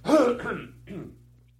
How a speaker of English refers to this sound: I got a cough. Hold on.